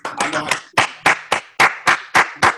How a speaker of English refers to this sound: I don't worry about it. I give my own self my claps. You ain't got to worry about it.